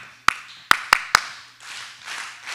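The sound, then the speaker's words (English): A church audience claps a short rhythm in unison, using their hands as instruments: four sharp, loud claps with an uneven beat (one, pause, then three quicker), followed by a soft, scattered wash of crowd noise. No voices. “Everybody get your hands up. This is your instruments.”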